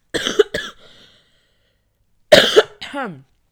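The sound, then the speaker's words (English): Fairly loud coughing in two bursts: a quick double cough, a pause of nearly two seconds, then another hard double cough trailing into a brief voiced groan. “Sorry, I need to cough. I can feel it coming.”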